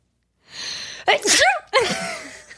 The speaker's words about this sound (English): Wait, I'm going to sneeze. Nope, it's totally gone. It's 100% gone.